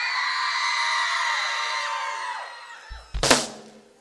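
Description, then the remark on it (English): A crowd of high-pitched young voices, kids and teenagers in an audience, scream together as loud as they can on the count of three for a couple of seconds, the shrill sound thinning and trailing off, followed by a sharp, loud burst of noise near the end. “Kids, teenagers and kids, if you're in school, in any grade, I'm talking to you. One, two, three, scream!”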